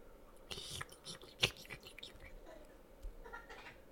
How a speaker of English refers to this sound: I'm going to go for a sommelier sip.